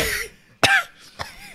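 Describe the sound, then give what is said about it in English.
A coughing fit: two harsh, raspy bursts about half a second apart, following a rough, breathy hack, with no talking. “Good thing you can't cough the AIDS out, can you”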